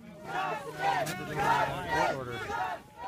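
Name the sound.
crowd of people cheering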